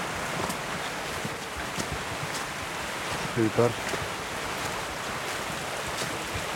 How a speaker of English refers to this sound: I can really hear the stream beside me. An unnamed stream as far as I know.